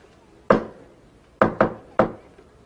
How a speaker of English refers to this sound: Tell you what. If I have any kind of news of any kind, something good, something nice that I want to share with you or something, I will knock 4 times, okay? It's going to be our secret code.